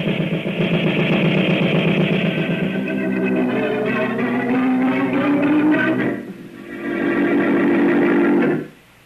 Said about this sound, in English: What's the matter? That black car coming this way. I don't like the looks of it.